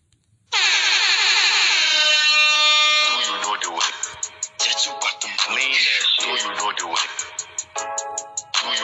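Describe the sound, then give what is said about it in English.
A loud, blaring air horn sounds one sustained, steady-pitched blast for about two and a half seconds, followed by rapid, choppy voices talking. “Let me sound that alarm.”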